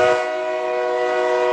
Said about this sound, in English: And for those of you who missed it, here's the train.